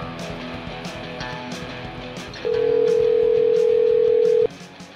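A telephone call-connecting tone for an incoming call from a caller in Paris, France: one loud, steady mid-pitched beep holds for about two seconds, then cuts off, over a quieter rhythmic musical backdrop that runs throughout.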